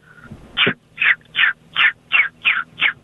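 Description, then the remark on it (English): A person imitates a baby chick with seven quick, high-pitched peeps in a steady, even rhythm, fairly loud, with no talking. “Well, that was a baby chick.”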